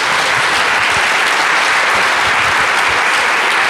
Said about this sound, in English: Before we start that, could I get one round of applause for this great panel?